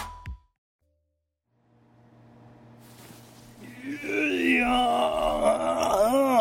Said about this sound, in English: Yawn. Yawn.